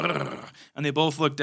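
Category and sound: vocal imitation, voice imitating a growl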